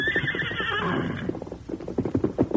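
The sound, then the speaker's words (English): The horse Silver gives a loud, shrill, quavering whinny lasting about a second, then a rapid run of rhythmic thudding beats like hooves setting off follows. “Come on, Silver. Hail, Silver! Away!”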